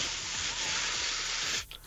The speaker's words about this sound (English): In front of me, you will see this lovely can of Right Guard 48-hour antiperspirant. Let's give it a spray, shall we? Spray it around the room, the fake living room.